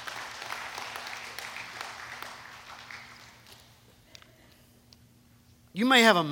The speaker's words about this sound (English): Can you give the Lord a hand clap of praise here tonight? He's an awesome God.